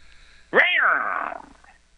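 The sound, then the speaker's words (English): A street cat in a movie gives a single loud yowl, a drawn-out wailing cry that rises sharply then slowly falls and fades over about a second, with nothing else around it. “All right, is that the end of the cat?”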